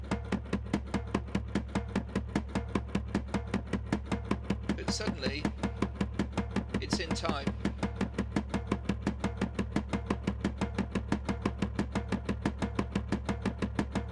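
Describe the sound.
Fast, steady drumbeats repeat evenly from start to finish in a stone space, each hit blurred by ringing echoes, while a voice briefly speaks over the unbroken rhythm.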